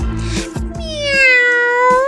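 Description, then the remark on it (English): A person voices a cat's meow, one long, drawn-out call with a rising then falling pitch, loud, following a couple of short vocal sounds. “If you're wondering why we're meowing, we have a really great story for you about cats in the school system”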